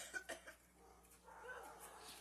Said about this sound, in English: This is me running back inside to get the wasp spray to try to spray these dogs. And they would not let go of my dog.